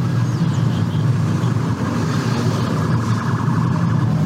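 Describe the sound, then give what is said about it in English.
A state trooper siren sounds continuously, a loud, steady droning hum with layered whining tones that barely rise or fall, running unbroken from start to finish with no one talking. “There's like a louder, weird one. It like literally sounds like a UFO or some shit like that.”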